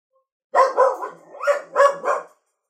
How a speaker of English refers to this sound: The dogs are barking. That's Pudge that you can hear. Pudge. Pudge. Oi.